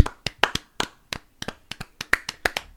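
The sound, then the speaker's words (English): Hands clapping in a quick, slightly uneven run of about fifteen sharp, crisp claps over a few seconds, with no voices, applauding Kronk for being crowned best Disney minion. “So it sounds like we need to give a little round of applause to Kronk for being crowned our best Disney minion.”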